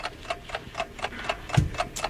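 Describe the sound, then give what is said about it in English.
A countdown clock ticks steadily, about four crisp clicks per second in an even rhythm at moderate volume, with one brief low thump partway through and no voices. “Like, I expect you guys to get this before the clock hits 0.”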